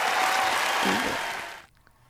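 A burst of dense, steady applause, loud and hissy with many overlapping claps, holding for about a second and a half before cutting off abruptly into near silence.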